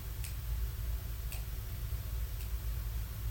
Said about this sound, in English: About all I can hear is ticking clock.